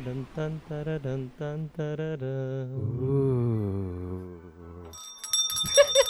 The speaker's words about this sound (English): I'm gonna use this bell a lot. I found this bell while cleaning up my room, and I'm just so like silly. It's my new gift to the world.